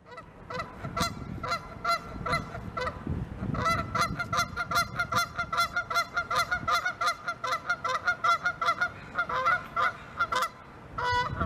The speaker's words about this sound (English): You might think of them as docile layers of poop everywhere, but the Canada goose, when irritated and aggravated and feeling put upon, can turn into a vicious attack goose. Let's listen, shall we, together to the sound of an attack goose.